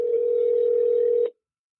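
A single steady telephone tone holds for just over a second and then cuts off into silence, as a line is dialed to call a woman back after being disconnected.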